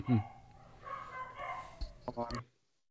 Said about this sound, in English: God, those dogs are really on about something.